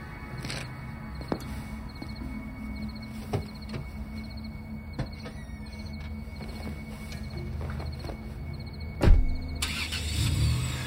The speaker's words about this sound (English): I started my car.